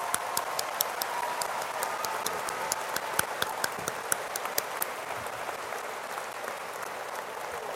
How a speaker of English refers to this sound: And now a round of applause.